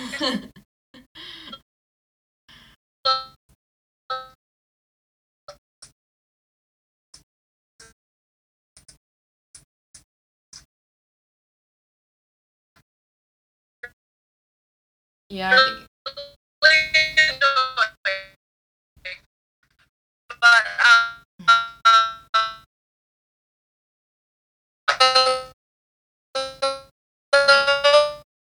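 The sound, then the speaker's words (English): A loud alarm rings in repeated bursts of rapid, shrill, pitched tones, separated by short pauses, after a stretch of faint scattered pings. “So, I mean, there's a huge alarm.”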